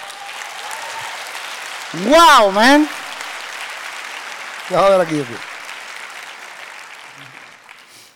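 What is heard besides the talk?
audience applause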